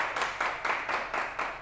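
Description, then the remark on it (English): An audience claps in a steady, even rhythm, roughly four claps per second, at moderate loudness with no talking over it. “Everybody clap”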